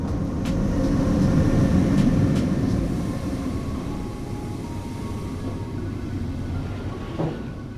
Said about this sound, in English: The dream train arrives at Lost Toys Station.